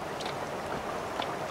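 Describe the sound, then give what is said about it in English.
A boat being paddled down a river in a scene from the 1995 film Dead Man: a steady wash of moving water with two soft paddle splashes about a second apart, fairly quiet and with no voices. “Nobody paddles him down a river toward an uncertain fate.”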